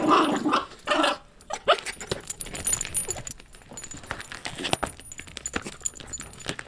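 A dog, Tillamook Cheddar in Brooklyn, growls in short, rough bursts, with busy scratching, tapping and rattling noises as she aggressively paws, claws and attacks a drawing board, making art with her paws and body.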